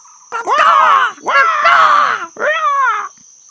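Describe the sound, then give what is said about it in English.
Macaw parrots cawing at the treetops, in the emergent layer of the Amazon rainforest: three loud, raspy squawks in quick succession, each harsh and screechy with a wavering pitch, the last one shorter, over a faint steady high whine. “And right at the treetops, macaw parrots cawed in the emergent layer.”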